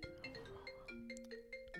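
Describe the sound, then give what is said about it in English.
An incoming phone call ringtone chimes through a Mac laptop speaker, a quick repeating melody of bright electronic notes playing fairly quietly, with no one talking over it. “I hate when my Mac gets hooked up to my phone.”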